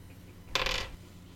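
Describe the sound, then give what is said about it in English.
A small eight-sided die (d8), rolled during a tabletop game, rattles and clatters briefly across a hard tabletop, crisp, then settles into quiet, landing on four. No voices accompany it. “So go ahead and roll them bones. I don't think I've rolled the d8 so far.”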